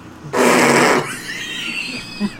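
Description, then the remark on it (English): A person blows a loud, wet raspberry with their mouth, mimicking a fart in one buzzing burst of under a second, followed by quieter breathy noise. “No, see, you gotta do it so it sounds like an actual fart.”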